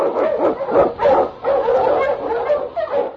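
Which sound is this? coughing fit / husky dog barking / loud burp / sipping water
husky dog barking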